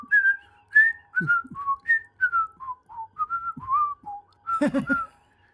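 A bright whistled melody, the TV theme tune of the show where Opie and Andy walk back from fishing, in a run of short, clear notes stepping up and down, with a brief clattering burst near the end.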